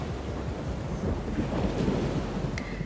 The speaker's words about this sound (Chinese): 在这个时候，黑压压的云朵开始在海的上空聚集，咸咸的海风狠狠地拍打着海的脸颊，而原本平静的海面也突然开始动荡了起来，狂风咆哮，电闪雷鸣，然后下起了瓢泼的大雨。